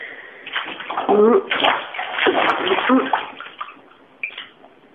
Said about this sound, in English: It does not take very long to have a rat bath, especially when they're jumping in and out all the time.